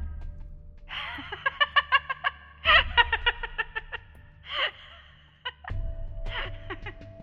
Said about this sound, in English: Mum will literally kill me if she hears you coughing like that.